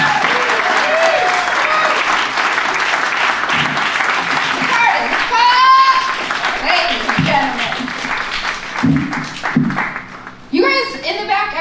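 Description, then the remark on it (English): A comedy show audience breaks into sustained applause for itself, dense clapping with a few whoops and cheers rising above it, the clapping thinning toward the end. “You are, so round of applause for yourselves for being fucking amazing audience.”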